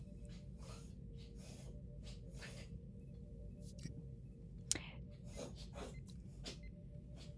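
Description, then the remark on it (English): Someone has a coughing fit, a string of short, harsh coughs in irregular bursts, set against a steady low rumble of background noise. No one speaks. “I think oh dear, someone's having a coughing fit behind me.”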